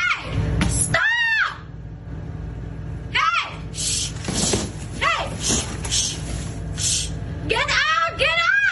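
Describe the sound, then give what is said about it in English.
Several people scream in panic as a large brown bear enters a 7-Eleven store, shrill rising-and-falling cries coming in repeated bursts over a constant low rumble, loud, with agitated voices in between. “Panic, screams, and tears won't deter this hungry fellow.”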